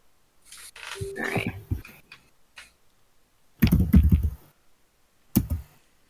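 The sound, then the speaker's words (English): Dice clatter and click as someone rummages through a huge pile of them looking for a d4, in three bursts of rattling with quiet gaps between, fairly loud. “I can't find a d4. I have a huge pile of dice and all my d4 are gone.”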